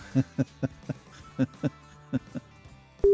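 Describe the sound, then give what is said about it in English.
A phone ringtone plays in short, evenly spaced tonal bursts grouped in pairs, somewhat quiet, repeating across the few seconds before a lower tone sounds at the end. “My phone's ringing in the background.”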